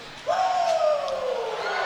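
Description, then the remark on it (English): A hockey arena crowd suddenly bursts into loud, sustained cheering, with a drawn-out tone that slowly falls in pitch riding above the roar. “Behind the goal, and this crowd with something to cheer about, and here come the Giants.”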